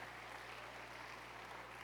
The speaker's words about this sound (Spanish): Y vamos a darle un aplauso a todos nuestros niños. Let's give a hand clap to all our babies.